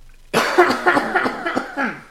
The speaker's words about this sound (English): And this episode is brought to you by the pork fried rice that's stuck in my throat, making me cough.